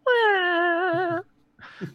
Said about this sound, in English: Could you imagine... a cat in a Reclaimer, what will happen to the cat? Why is this recycled pile of scrap meowing?